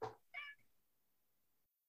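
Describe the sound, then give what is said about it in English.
A cat named Whiskers gives a short meow, fairly clear, just after a brief rustling burst, then quiet with a faint click at the end. No one speaks. “Oh, Whiskers keeps meowing.”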